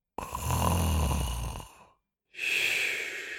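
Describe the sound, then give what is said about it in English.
A spectator asleep in a seat snores loudly: a low rattling buzz on the breath lasting over a second, then a brief pause and a long airy exhale. No talking. “At the time, most of the competitors were off track, sleeping, and so were many of the spectators in their seats snoring away.”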